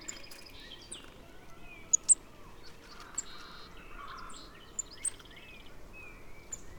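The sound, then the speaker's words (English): Several very high, thin golden-crowned kinglet call notes sound in short scattered bursts, faint against a steady outdoor background murmur, with other bird chirps mixed in. “Once again, as if my bird walk were orchestrated by the bird gods themselves, a golden-crowned kinglet shows up. Listen for its high-pitched notes.”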